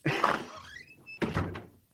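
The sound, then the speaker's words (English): A door marked 1960 in a store swings open with a brief rising creak, then closes with a solid thump and a short rattle, fairly loud, with no one talking. “But hang on, let me go into this door that says 1960,”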